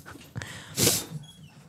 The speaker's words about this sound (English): The dog is very excited to be here. She found out how to open my office door, guys.